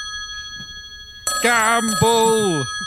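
phone ringtone

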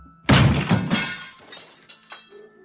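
glass shattering

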